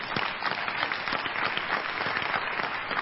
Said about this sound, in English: I think you will give God a clap offering for that.